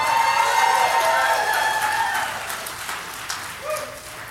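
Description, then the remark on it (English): A church audience claps and cheers loudly to thank the children's ministries, with high whoops and a whistle rising over dense, crackling applause that gradually tapers off toward the end. “And now we got to do a really loud one. Can we thank all the children's ministries?”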